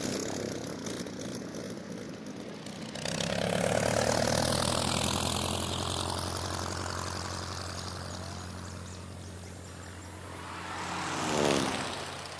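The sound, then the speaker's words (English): A propeller airplane on a plane ride at an air show, flown by pilot Frank Hawks, drones steadily, its engine swelling louder after a few seconds and holding a rough, buzzing roar, with a shifting pitch as it passes and a brief surge near the end. “$10 to take her on a plane ride”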